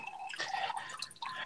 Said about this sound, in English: And we're back. Everybody has poured a good drink.